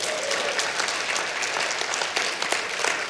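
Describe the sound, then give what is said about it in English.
A church audience breaks into steady applause at the news that 2017 brought the church's highest giving ever, a dense wash of many hands clapping at an even, loud level for several seconds with no voices standing out. “So that's something to cheer about.”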